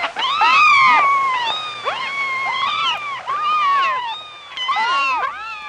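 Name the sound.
kittens meowing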